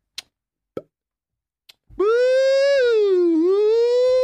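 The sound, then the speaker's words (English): A few faint clicks, then a voice wails a loud imitation of a rising police siren that sweeps upward, holds, dips briefly and climbs again over about two seconds. “Bro, if I'm a cop and you give me the undercover car, nah, I don't want that bitch ass siren that goes up like...”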